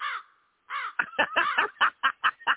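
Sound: crow cawing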